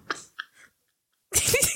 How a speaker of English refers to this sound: that he coughing in the mic and clearing his throat in the mic. I gotta cut that.